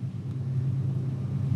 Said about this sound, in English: I'm not used to that train.